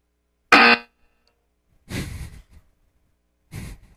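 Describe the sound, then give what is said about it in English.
A loud, brief buzzer blares once after a joke, bright and harsh, then cuts off; two soft breathy exhales follow after pauses, with no talking. “I just kind of buzzed that.”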